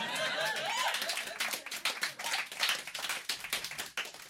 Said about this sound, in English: Couple of claps, everyone else is like, but what if you just did some burpees?